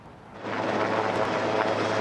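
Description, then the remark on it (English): A firefighting helicopter drones overhead near Highway 1 west of Hope, going back and forth to fight the Flood Falls Trail wildfire; its steady roar swells after a brief lull into a loud, continuous wash of engine and rotor noise with a low hum underneath. “And all day, helicopters overhead going back and forth to try and put out this fire.”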